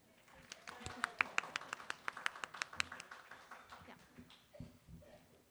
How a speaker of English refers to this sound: And then we can have a little second round of clapping.